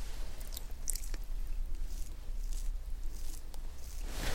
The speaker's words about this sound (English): So let me just comb your brows a little bit. Just like that, downwards.